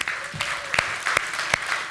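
An audience at an 11 o'clock morning gathering claps hands in answer to being asked who is the oldest child in their family, a modest, restrained burst, a steady patter of scattered claps with a few louder, evenly spaced sharp claps cutting through. No one speaks over it.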